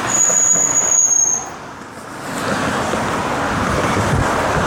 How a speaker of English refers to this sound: I'm just pausing for all the cars to go by. That's what I'm doing, I'm just pausing.